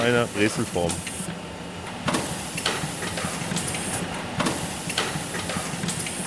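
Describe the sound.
A pretzel-shaping machine runs steadily, with a continuous mechanical whir and hiss, punctuated by a few sharp clanks and puffs of air, as dough falls in, a roller rolls it and flattens the ends, and vacuum cups shape it into pretzels. A voice is briefly heard at the start.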